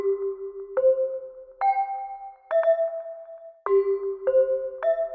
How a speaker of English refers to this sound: and the idea was that at the end of each program, the announcer who's at the microphone and is saying, this is the National Broadcasting Company, would strike a seven-note chime sequence on a set of hand chimes that he held next to the microphone.